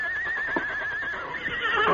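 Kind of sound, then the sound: animal, horse neighing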